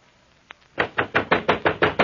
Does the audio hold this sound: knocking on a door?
yes